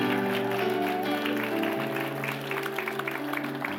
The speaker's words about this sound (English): Isn't that good? Come on, give them a big hand clap.